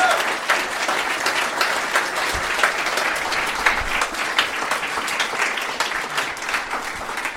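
A crowd claps steadily in sustained applause, a dense wash of many hands with fairly even loudness and no voices standing out.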